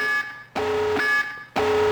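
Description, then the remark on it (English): A video game's tactical nuke incoming alarm: loud, harsh blaring pulses repeating roughly twice a second, each with a steady buzzing tone and sharp onset, with no voices over it. “Tactical nuke incoming!”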